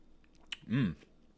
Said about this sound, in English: I love it when I can chew my water. What's that even mean? I freeze my water.